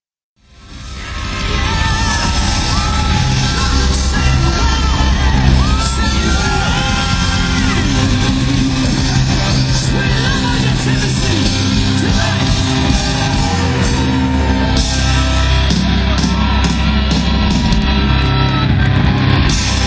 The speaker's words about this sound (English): They ended …, and now they were leaving the stage. Let's listen to the encore yell.